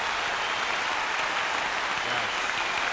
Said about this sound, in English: I got to give you a hand clap, girl.